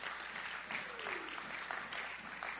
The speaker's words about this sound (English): If you believe that, give the Lord a good round of applause.